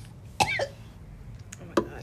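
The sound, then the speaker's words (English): Two sharp coughs about a second and a half apart, fairly loud, each a short harsh burst with a throaty, voiced edge, over a quiet low background hum. “I'm sorry, I just started coughing.”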